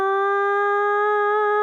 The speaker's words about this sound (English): What is that? Do I hear a siren?